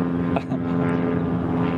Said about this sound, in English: Shut up, plane.